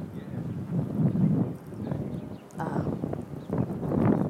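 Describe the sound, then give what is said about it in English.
Gusty wind buffets the microphone outdoors in a park, a low rumbling roar that swells and dips in waves, with faint rustling and background activity. “What a beautiful, windy-ass day in the park.”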